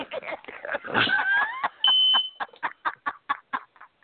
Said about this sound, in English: do you have to get the alarm? Do you need a minute, or do you need to go? Or Yeah, I just got it there, so it should be fine now.